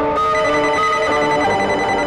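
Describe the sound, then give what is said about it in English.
A telephone ringtone rings loudly, a bright electronic tone with rich harmonics sounding continuously without pause, with no voices over it. “Never heard this ringtone before.”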